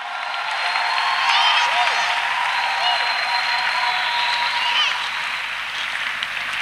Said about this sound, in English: So as you were clapping unto the Lord and shouting unto the Lord, you were entering the password.